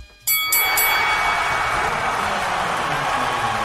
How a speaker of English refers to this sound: Here's the bells.